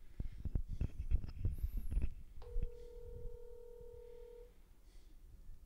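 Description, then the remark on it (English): A phone line rings on an outgoing prank call: one steady two-second ringback tone, clear, after a stretch of muffled rumbling and handling noise, with no one picking up. “He's not drunk enough to answer the phone.”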